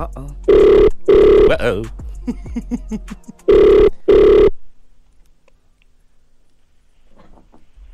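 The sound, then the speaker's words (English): A telephone ringback tone sounds twice in a double-burst pattern, steady and fairly loud, with a short spoken exclamation between the rings before the line falls quiet. “All right, it's ringing.”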